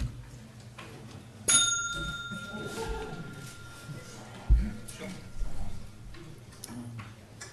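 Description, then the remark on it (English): A single bright bell, kept behind a computer, is struck to start a session; its tone rings out clearly, lingers and fades over a few seconds, with soft murmur and faint indistinct voices in the background. “If everyone would take, hit the bell.”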